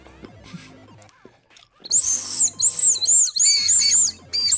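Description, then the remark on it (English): Toy whistles are blown in a series of loud, shrill, warbling bursts that rise and fall in pitch, following a quieter stretch of faint rustling and clatter. “Should we do the Dagashi Kashi intro with these whistles?”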